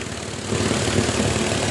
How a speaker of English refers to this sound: I'm out here drilling into the ground. Boy, this ground is hard as hell. I ain't gonna stop. I'm gonna keep on drilling. Still drilling. Yep. Ain't stopped yet.